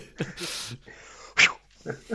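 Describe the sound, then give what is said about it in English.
A neighbour's dog next door gives a few short, sharp barks in quick succession, one louder burst standing out in the middle, with quiet background noise between them. “Send next door's dog after it.”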